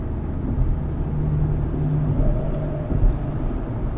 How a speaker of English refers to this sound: Man, I think we just got passed by the truck from, what was that, Joyride? Looks like it. Sure the hell did.